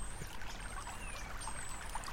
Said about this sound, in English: In the background, you might be able to hear the babbling sound of Dragon Brae, the local waterway which recently attained blue flag status after a massive cleanup operation.